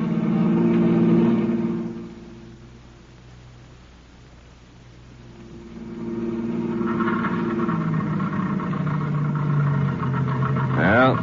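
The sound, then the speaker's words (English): A car engine hums steadily, falters and fades, then surges back before sputtering out as it runs out of gas; the engine sound is fairly loud. “The end of the gas.”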